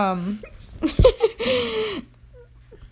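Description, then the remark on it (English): A sudden burp bursts out around the middle, wet and throaty, bringing up water, with brief giggly vocal sounds before and after it. “burped and water came up.”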